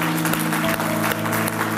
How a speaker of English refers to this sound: If you prayed with me, just put your hands together and clap real good so they can hear that you're here. Amen.